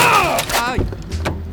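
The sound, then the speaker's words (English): A car strikes a cyclist in a bike lane in Paris: a squealing, wavering tone slides downward into a heavy thud, followed by a few scattered knocks and rattles. “Vous venez de me percuter dude, avec I votre think voiture.”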